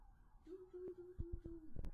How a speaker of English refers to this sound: Really? Police sirens?